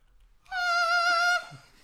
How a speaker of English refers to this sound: So in this game, for licensing reasons, I play the kazoo to hum the thematic score of a movie.